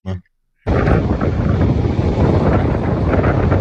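Loud, steady wind buffeting a microphone up in a tower, a dense low rumble with gusty roar that starts abruptly after a brief burst and near-silence, then continues without letup.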